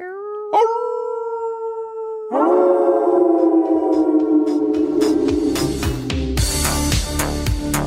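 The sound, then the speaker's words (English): A loud, drawn-out wolf howl holds a steady pitch, then a fuller, rougher howl swells in and overlaps it, sustained to the end with no talking; the howl signals that the waves are about to start in a water park wave pool. “but I found them and they're all like waving, and then I hear this big howl.”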